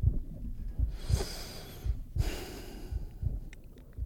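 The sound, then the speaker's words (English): Two loud nasal breaths, a long inhale then an exhale, each rushing and snort-like, over a steady low rhythmic thumping of the person's own heartbeat, in a very quiet room where internal body sounds become audible. “I can't even like breathe through my nose because it's so loud.”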